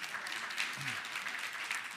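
An audience applauding: a steady, dense patter of many hands clapping at an even level throughout, with a brief low murmur partway through.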